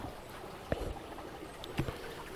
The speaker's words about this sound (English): And hopefully the water isn't too loud.